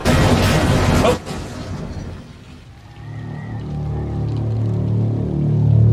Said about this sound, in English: Did our truck crash? Our truck is very crashed.